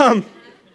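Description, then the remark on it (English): A single short sneeze with a falling voiced burst from someone in the audience rings out, its echo trailing off over a faint murmur of people. “God bless you.”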